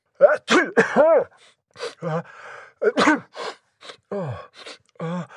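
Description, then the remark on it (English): Three loud sneezes in a row, each preceded by sharp, voiced gasping intakes of breath, with brief pauses between them and no talking. “Amazing sneezing.”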